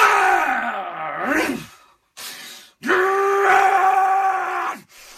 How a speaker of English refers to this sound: He has one guttural fucking scream right at the beginning, which I love.